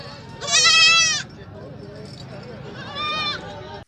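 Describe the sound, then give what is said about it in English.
A goat bleats twice, a long wavering cry followed by a shorter one a couple of seconds later, fairly loud over a low background of murmuring voices. “I don't know if goats are edible. Are you going to milk it?”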